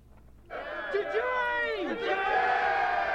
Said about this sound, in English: Yeah, they're still cheering for Jane in the bar.